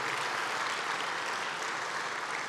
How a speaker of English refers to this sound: Let's please give them a round of applause because I think that they deserve it for the amazing work that they do.